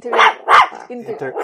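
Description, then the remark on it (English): A voice imitates a dog barking: two loud, sharp bark-like bursts in quick succession, followed by a few softer, shorter vocal yips trailing off. “Does she think I'm barking or what?”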